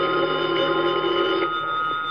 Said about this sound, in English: Then, at about 11:15 that night, the phone in the lobby started ringing.